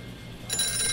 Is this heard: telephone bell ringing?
yes